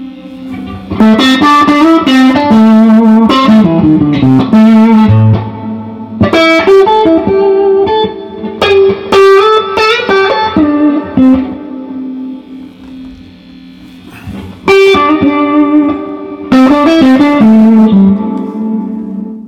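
Electric guitar through an amp with lush spring reverb, played in ringing chords and single notes whose tails shimmer and linger between phrases, fairly loud and close, with no talking.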